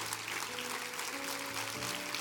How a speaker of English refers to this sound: Would you stand to your feet and receive the word by clapping your hands all over this house right now? Receive the word.